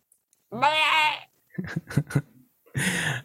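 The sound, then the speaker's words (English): A voice imitates little baby bleats: a wavering, quivering cry, then a few short choppy bleats, then a final breathier bleat. Nothing else is audible. “He makes little baby noises.”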